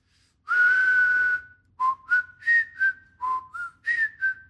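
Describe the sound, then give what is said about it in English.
A breathy human whistle plays a short tune: one long airy held note, then a string of quicker separate notes that rise and fall, with audible breath hiss and no talking. “That is the worst whistle I have ever heard. That just sounds like a whistle.”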